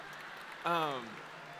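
A crowd claps for themselves in a steady, dense patter throughout, and a single falling vocal whoop or cheer rises briefly above the applause midway through.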